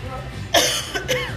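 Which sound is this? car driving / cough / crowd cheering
cough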